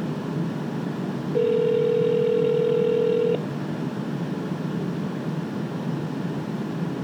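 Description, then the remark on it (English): A single telephone ringback tone heard down the line, a steady two-second electronic buzz-tone that stops abruptly, surrounded by low, hissy line noise and no voices; the call goes unanswered. “She doesn't answer.”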